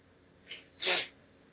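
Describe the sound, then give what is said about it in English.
Two quick sniffles from a nose affected by the seasons changing from warm to cold, a short soft one followed by a longer, louder wet snuffle, breathy and hissy, with no talking around them. “And again, I apologize for the sniffles, but this is the physical nature that medication cannot help me with when the seasons change at this time of year.”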